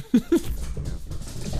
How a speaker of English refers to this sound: Jesus, is that dog on speed?